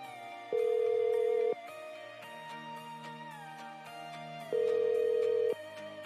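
A phone line rings while a call to the Cozy Garden Inn in Richmond, Indiana, is transferred to the front desk: two loud, steady electronic ring tones about four seconds apart, each lasting roughly a second, over quiet continuous background music.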